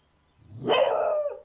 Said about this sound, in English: Okay. That was that dog number one.